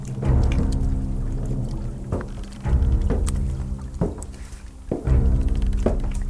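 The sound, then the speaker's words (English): A docked fishing boat's engine idles with a low, steady rumble while heavy thuds land about once a second, like boots tramping down a wooden ramp, as six armed men in black jackets descend the boat ramp, followed by a man in a trench coat. No one speaks. “I followed Joey's gaze to the now docked fishing boat. Six armed men descended the boat ramp.”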